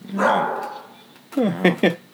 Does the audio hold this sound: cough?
no